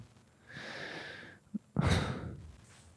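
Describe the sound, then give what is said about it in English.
A person mimics a father's loud snoring: a long, raspy inhale with a whistling edge, a short pause, then a harsh, rattling snort on the exhale. No one speaks. “I hate it when people like, they can't admit that they're snoring.”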